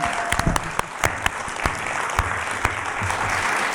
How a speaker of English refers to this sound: Ladies and gentlemen, give this man a big round of applause.